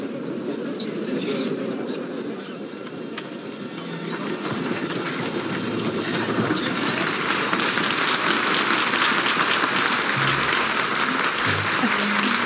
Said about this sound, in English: I love that the trailer just starts with applause. Yeah. So random.